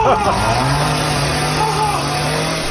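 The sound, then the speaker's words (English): An old-fashioned car horn blares in one long, droning low honk lasting a couple of seconds, loud over a rumbling engine and background noise. “So that old timey horn?”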